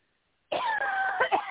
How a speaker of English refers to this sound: Of course I have to start coughing on the show. Don't die on me. I'm doing okay.